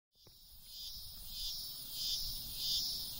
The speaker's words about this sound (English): If you live on the east coast of the U.S., you probably heard the buzz about cicadas. They're pretty loud, but they make some cool noises, which got me thinking.